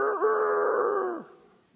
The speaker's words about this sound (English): What would he do? Peter again denied it, and at once a rooster crowed.